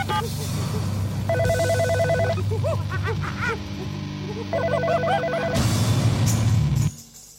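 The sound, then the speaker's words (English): Two bursts of a ringing telephone bell, each a rapid trilling ring lasting about a second, over a busy background of voices and chatter that swells near the end. “And a dazzling array of trained monkeys manning the phones.”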